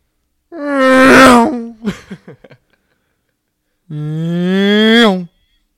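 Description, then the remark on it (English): A person vocally imitates a car doing 90 miles per hour down a one-way street in Orlando: two loud, buzzy, droning revs with rising pitch, the first trailing into a few sputtering pops, then a pause before the second. “But first off, let's hear you guys make your best sound of a car doing 90 miles per hour down a one-way street in Orlando.”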